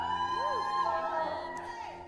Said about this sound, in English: next week it's going to be loud when we call out the word of the Lord, the verse in Scripture